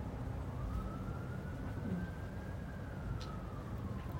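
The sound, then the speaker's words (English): An emergency siren wails in one long, slowly rising and falling tone, fairly faint beneath a steady wash of outdoor traffic rumble, with no one speaking. “Where do you think that siren's going to?”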